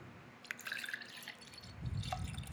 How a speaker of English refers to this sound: It was really hard to find a sound effect of water that, or not water, but just like something getting poured that didn't sound like pee. I spent hours looking,